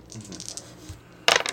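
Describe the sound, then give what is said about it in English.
Dice tumble on a hard tabletop, rolled to retry a first aid check: a few soft clicks and rattles, then a sharp clatter as they land and settle near the end. No one speaks. “I never roll well, so I don't know what to do. Roll a different dice, set of dice then.”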